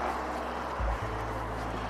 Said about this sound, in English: And yes, I'm outside. Someone's got a loud exhaust.